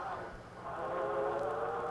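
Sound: train approaching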